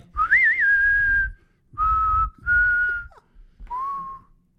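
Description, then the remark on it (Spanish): A person whistles four short, steady notes, the first opening with a quick warble before holding, the last slightly lower and softer, with brief pauses and breathy noise underneath. “Pero dale, si yo silbo, no sirve, hermano. Porque entonces esto suena como dos gente silbando.”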